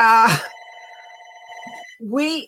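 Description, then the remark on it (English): A landline house phone gives one sustained electronic ring, steady and fairly loud for over a second, with a voice speaking just before it and another voice right after. “excuse me, guys, that's the house phone.”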